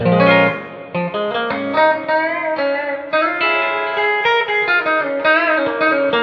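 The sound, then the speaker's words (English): A clean electric guitar on its bridge pickup rings out with reverb, mixing strummed chords and picked notes in a steady, unbroken phrase, fairly loud with no talking. “That's just the bridge.”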